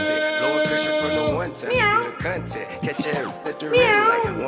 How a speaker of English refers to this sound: Actually, wasn't any talking. Just a cat meowing.